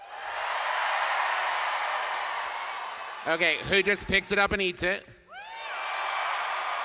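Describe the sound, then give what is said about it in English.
A crowd cheers loudly for a few seconds in answer to a quick poll, then a man's voice asks a question over a brief lull before the cheering swells up again just as loud. “And let right? us know by your cheering.”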